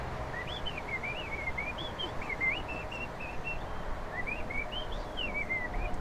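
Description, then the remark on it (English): Harrison Ford whistles a warbling, birdlike melody imitating a bird in a tree, a string of rising and falling chirpy phrases, fairly clear over a steady background hiss with no talking. “I do impressions of birds. This is a bird in a tree.”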